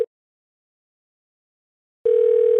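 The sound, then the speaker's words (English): A steady, mid-pitched electronic phone ringback tone as a call is placed to a caller: a brief blip at the start, a long silent gap, then the tone sounding again, fairly loud and clear with no talking. “We're going to ring him up and see what happens.”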